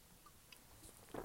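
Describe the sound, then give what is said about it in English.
A quiet sip of beer, with faint wet mouth sounds and a brief slurp near the end, and no talking. “Let me have a bit more beer.”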